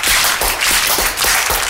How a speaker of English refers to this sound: Why are you slow clapping? Why are you all slow clapping?